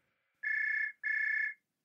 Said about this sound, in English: Oh my gosh, I'm so sorry, you guys. My spy phone is ringing. I'll be right back.